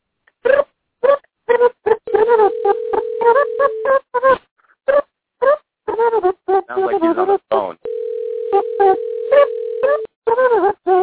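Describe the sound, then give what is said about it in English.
A telephone line plays two long, steady tones, each lasting a couple of seconds, amid choppy, muffled phone-quality bursts of voice or beeps, as a call is placed to a man and doesn't go through. “Sounds like he's on the phone.”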